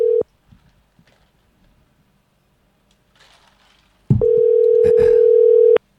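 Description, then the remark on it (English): An outgoing phone call's ringing tone: a brief burst of steady electronic tone, a few seconds of near silence, then a longer, loud ring tone lasting about a second and a half. “It's ringing.”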